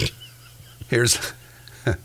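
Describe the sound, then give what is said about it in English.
A pig running loose on an interstate in Farragut, Tennessee gives a couple of short, harsh squealing grunts, one longer burst followed by a quick second one, fairly loud against a quiet background hum. “Here's a pig that was running loose on the interstate in Farragut, Tennessee.”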